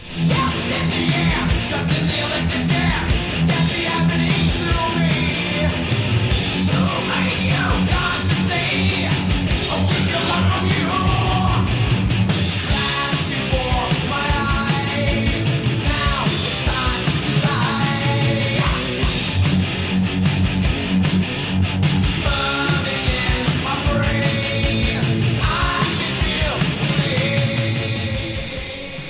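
A heavy metal song plays loud and dense throughout, with thick distorted guitars, driving drums and a strained vocal line riding on top at a steady, unbroken intensity.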